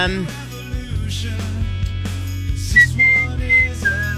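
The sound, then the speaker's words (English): Someone whistles a short melody, a few clear sustained notes rising and falling, over steady background music with no talking. “Oh, I like it when you whistle.”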